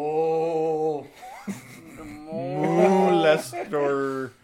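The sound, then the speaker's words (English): A cow moos in long, drawn-out, low bellows, several in a row, loud, with no other sound between them. “Oh, and the cow.”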